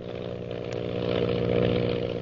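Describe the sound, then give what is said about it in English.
Lily DeVril's powerful propeller plane's engine drones steadily, a loud buzzing hum with strong low harmonics that swells slightly as it zooms on, with no voices present. “Lily DeVril's powerful plane zooms on in an attempt to elude the mysterious pursuer.”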